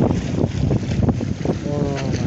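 Sea water sloshes and laps against stones in a steady, churning wash, heavily mixed with gusty wind rumble buffeting the microphone.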